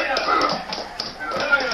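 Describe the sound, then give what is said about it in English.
Mules strain to drag open a heavy stone slab door cut into a mountain wall: a continuous gritty scraping with scattered hoof taps and shuffling, steady, with indistinct voices mixed in. “Those mules are pulling open a stone slab.”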